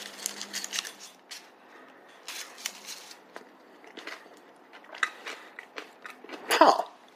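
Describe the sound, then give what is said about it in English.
Crisp crunching and munching on a new crunchy cookie peanut butter candy with chopped Oreo cookie pieces, irregular bites and chews with scattered crackly bursts, ending in a louder crunch near the end; no talking. “It just adds some crunch to it.”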